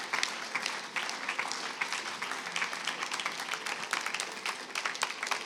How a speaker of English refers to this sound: Awesome. Friends, let's give them a round of applause.